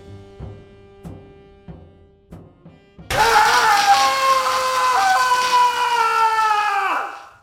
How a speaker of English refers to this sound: Yeah, that screaming idiot's me.